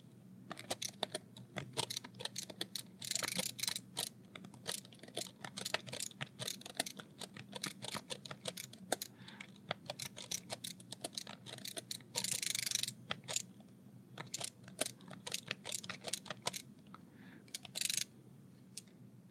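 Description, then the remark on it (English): Close-up typing on a refreshable braille display keyboard: a steady stream of crisp, irregular key clicks and clacks, with a few brief louder rustling bursts, and no voices. “That's about what it sounds like when you're typing on the unit right up close there.”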